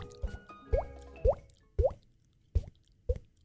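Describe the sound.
A series of six hollow, water-drop-like plops with a rising pitch, made by hitting a head, spaced roughly half a second apart, fairly loud with no talking.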